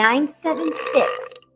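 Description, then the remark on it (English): A loud, drawn-out, voiced belch from a woman, alone. It rumbles with a throaty, wavering tone for over a second before cutting off abruptly. “What makes sexy women all over America comfortable enough to belch like this?”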